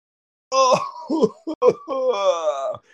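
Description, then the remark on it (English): A man's voice lets out a drawn-out, strained scream that wavers and breaks into groaning bursts, rising and falling in pitch before trailing off, imitating the monster Morgoth's dying howl as a cane sword is shoved into its skull. “And he just lets out this scream.”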